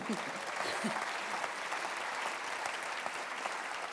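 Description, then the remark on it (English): Steady audience applause for cartoonist Nick Newman and Private Eye editor Ian Hislop fills the whole stretch, a dense, even wash of clapping that holds at a fairly loud level without rising or fading, with a few faint voices at the start. “Applause, please.”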